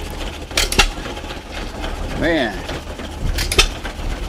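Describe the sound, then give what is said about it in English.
An old hit-and-miss engine turning an old-fashioned homemade ice cream maker at a Hamfest outdoor flea market fires in sharp, paired bangs separated by long quiet gaps, heard outdoors over a low rumble while a man speaks briefly. “Look at this ice cream maker. A hit and miss engine.”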